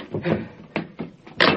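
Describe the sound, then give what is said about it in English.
A door being opened: a quick series of wooden clunks and latch rattles, ending in a louder, brighter knock, with no voices. “Wide-eyed with fear, he leaped to his feet and rushed to the door.”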